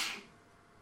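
A single quick sneeze, a short hissy burst of air that fades within a fraction of a second, heard fairly faintly and followed by near silence.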